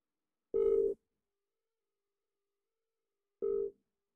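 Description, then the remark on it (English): Two bursts of a telephone ringback tone on an outgoing call, each about half a second of steady buzzing mid-pitched tone, separated by nearly three seconds of silence. No one speaks. “So let's give her a call now.”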